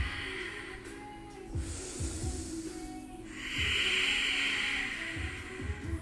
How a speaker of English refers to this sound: Put in and keep present ujjayi breathing. The simple seal of your lips. It doesn't require too much from you. This ujjayi, it requires mostly your attention. And any time you lose the breath, you lose the sound